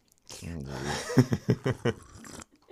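A noisy slurp of a drink, followed by a quick run of four rhythmic gulping swallows, fairly loud, then a faint breath at the end.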